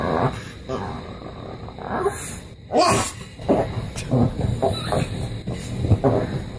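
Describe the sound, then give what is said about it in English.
A female dog grumbles and grunts in a run of low, throaty bursts, fairly loud, with an agitated, irregular rhythm and brief snorting breaths between them. “This is, you're still ignoring me and I'm pissed. So now I'm going to mess something up.”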